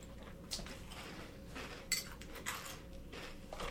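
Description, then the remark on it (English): Crunchy Froot Loops cereal being eaten, with a spoon clinking against a bowl and irregular crisp chewing bursts over a steady low hum. No one speaks. “Cereal in my mouth.”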